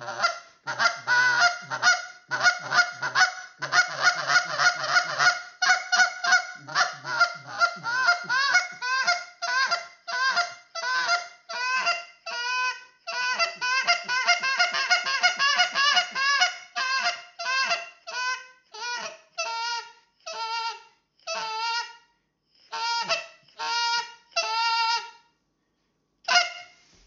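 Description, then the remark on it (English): A goose call blown to imitate Canada goose honks, demonstrating late-season goose hunting calls for geese spotted out in the field, in a long, rapid, loud series that gradually breaks into shorter, spaced clucks and spit notes, with no talking. “LATE SEASON GOOSE HUNTING, CALLING INSTRUCTION AND STRATEGIES”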